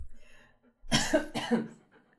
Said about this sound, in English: Hey, your cough's still there.